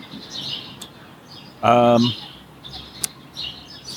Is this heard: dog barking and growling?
no